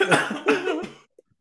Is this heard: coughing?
yes